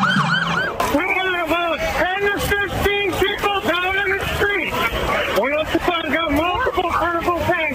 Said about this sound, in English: Then police cars came flashing by.